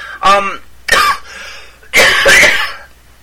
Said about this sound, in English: Don't make... please, I'm just going to cough. Sorry.